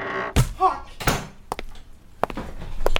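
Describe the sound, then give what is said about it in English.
A door bangs and thuds several times in an irregular sequence as someone enters with a belt caught on the door, a couple of loud sharp hits followed by lighter knocks, with a brief murmur of voice between them. “My belt got stuck on the door.”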